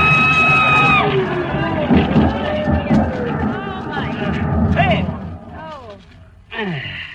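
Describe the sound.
A boat crash sound effect as one boat runs into another, staving in the bow: a dense, rumbling wash of crunching and splintering noise with a whistle-like tone at the start, voices shouting over it, and a final loud jolt near the end.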